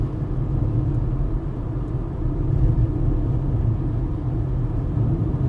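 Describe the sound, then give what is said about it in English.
A steady, low rumble of a car interior while driving home from Portland, with a constant road and engine drone that stays even throughout, no voices and no distinct events. “Driving home from Portland, where I did a show at, I don't know, Neighbors Tap Room or something like that.”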